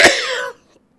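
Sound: cough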